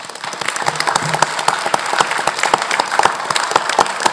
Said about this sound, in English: We've tried to honor him for a couple months in a row, and he is finally here tonight, so give him a round of applause first.